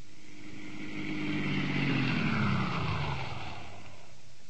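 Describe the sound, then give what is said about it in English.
A car engine drones steadily as the vehicle drives past, its pitch sliding gradually lower, at a moderate, even loudness with no voices. “I drove home, parked my car in my garage, turned off the lights, stepped out, and...”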